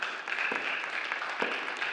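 An audience applauds with a steady, dense patter of many hands clapping, sustained evenly for two seconds at a moderate level, with no one speaking over it.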